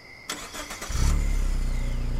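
A car engine cranks briefly with a whirring starter, then catches and settles into a steady, low rumbling idle, fairly loud, with no voices.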